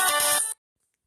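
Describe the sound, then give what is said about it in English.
A phone ringtone for an incoming call sounds in a single loud, bright burst of about half a second, with sustained electronic tones, then cuts off abruptly into silence. “You're getting a phone call.”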